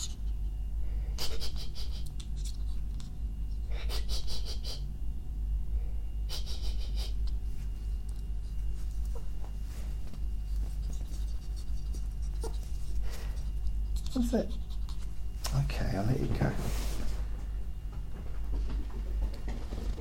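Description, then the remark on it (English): A dog sniffs a person's socks in short, breathy bursts at irregular intervals, then pants and snuffles more heavily toward the end, with a soft rustle and no talking. “In a hurry, he still stopped and had a little sniff of my socks before he got off.”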